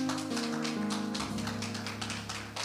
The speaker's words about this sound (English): For those of us who are in the sanctuary, give God a hand clap of praise.